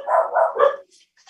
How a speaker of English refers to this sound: All right, well, then let's go back over to Zoom, and I understand we've got some dogs who want to weigh in.